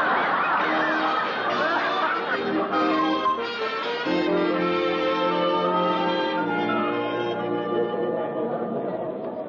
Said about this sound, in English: Oh, my, there's a crowd.